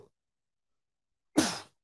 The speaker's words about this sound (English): Oh, sneezing out the sins of last night.